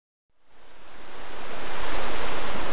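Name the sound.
fast-flowing river water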